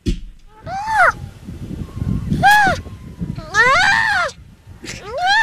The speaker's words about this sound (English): That is a baby seal. Play it again. This is the baby seal right here.